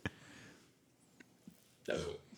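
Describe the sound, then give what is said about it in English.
A single sharp, loud sneeze bursts out near the end, after a short quiet stretch with a couple of faint clicks and a brief breathy sound at the start. “Bless you.”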